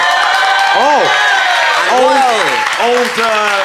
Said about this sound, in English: Old slow hand clap. Old slow gob himself. Slow hand clap, Matthew Crosby.